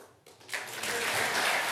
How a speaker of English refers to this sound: Applause for Johnson came, but slowly.